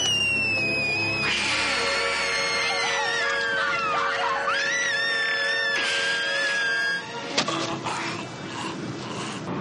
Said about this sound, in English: So the first time that his eyes are all red and his fangs was the first time she was seeing him like that. So the moment that when she screams, pure terror.